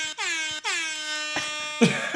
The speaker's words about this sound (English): Oh my God. Have we abused the air horn yet?